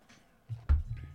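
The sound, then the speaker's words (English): Someone sips Smirnoff Ice Original from a small mixed can: a soft slurp followed by a couple of low, muffled gulps over about a second, with no talking. “okay, excuse me, I'll just have a quick sip.”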